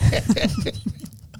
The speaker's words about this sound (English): You're making me cough. See? It's the damn air conditioner. Oh, it's the air here.